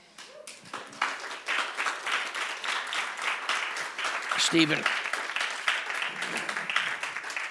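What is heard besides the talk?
audience applause and clapping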